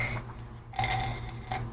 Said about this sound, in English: That background noise was me slurping. I'm already done.